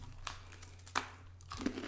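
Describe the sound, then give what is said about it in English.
A few crisp crunches of someone biting into a crunchy pumpkin-spice oat snack bar with pumpkin seeds and flaxseed, spaced irregularly over a low steady hum, with no talking. “Oh, it is crunchy.”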